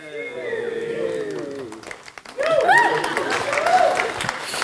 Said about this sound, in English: That round of applause is for her.